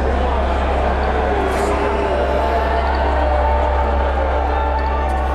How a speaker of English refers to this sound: event organizers asked people in the crowd to put on a mask, and get this, people in the crowd started booing.